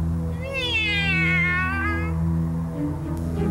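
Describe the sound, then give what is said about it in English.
A single long, drawn-out cat meow that rises and then falls, heard over a steady low background hum, with no talking. “Here, kitty, kitty, kitty. Stupid cat.”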